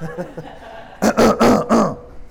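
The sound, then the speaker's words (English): A quick string of four harsh coughs, loud, bursting out one after another after a second of quiet murmur. “I heard a cough, right?”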